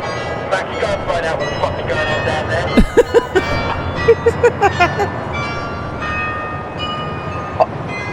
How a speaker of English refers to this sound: just waiting on church bells, mate. Yeah, where are they coming from? Where are they coming from? How long are these church bells? Right? Yeah, they're still going.